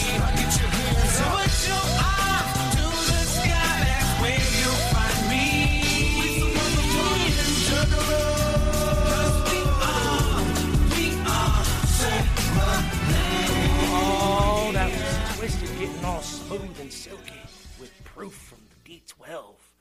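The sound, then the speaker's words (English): A hip-hop remix plays loudly, with rapped vocals riding over a dense, punchy beat that continues steadily before fading out in the last few seconds. “I'm not feeling that remix, but I mean, it's just me because I like the original.”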